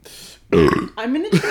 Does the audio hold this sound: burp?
yes